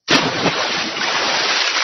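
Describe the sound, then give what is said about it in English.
A sudden loud splash as something thrown overboard from a boat hits water, followed by a sustained rush of churning water that fills the rest of the moment, with no voices. “You see, her husband killed her and her unborn son, Connor, and threw them over a boat. It's a crude joke.”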